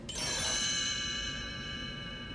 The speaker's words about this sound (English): You can read along with me in your book. You will notice time to turn the page when you hear the chimes ring like this.